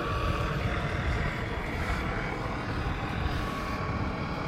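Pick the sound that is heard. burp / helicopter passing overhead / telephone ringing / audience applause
helicopter passing overhead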